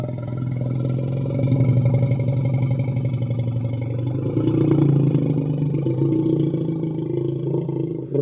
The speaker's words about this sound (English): I don't speak elephant, but I think he's trying to say he's giving a lot of thought to heading across the river into Laos or Myanmar to get away from it all. Elephants are smart.